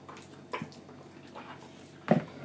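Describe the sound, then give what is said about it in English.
Thick liquid molding mixture drips and splats as it is dripped onto a person's body to make a mold, a few soft irregular plops with a louder, wetter one near the end. “As I'm dripping it on you?”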